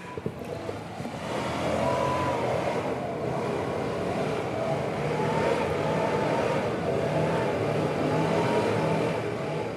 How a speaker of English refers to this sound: This will go for like another half hour at least. This leaf blower was across the street from where I live, but it still cut through my windows and walls. A verbal assault to an otherwise quiet one-bedroom apartment.